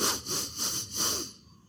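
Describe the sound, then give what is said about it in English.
Four quick, rhythmic sniffs drawn in through the nose as a breathing exercise to expand the ribs, each a short hissy rush of air, evenly spaced, before the breathing stops and it falls quiet. No one speaks. “So I became very good at doing a little kind of sniffing exercise, which, of course, you won't be able to see, but I'm going to do three or four sniffs in.”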